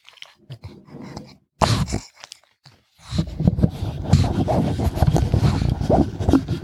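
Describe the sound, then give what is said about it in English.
A dog gives a short, sharp snort, then several seconds of snuffling, scratchy rustling and grunting noises follow, with no talking. “Okay, he snorted.”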